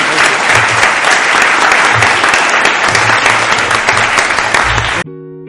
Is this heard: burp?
no